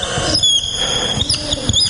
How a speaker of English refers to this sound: I'm going to use a darker pen that's hopefully less squeaky.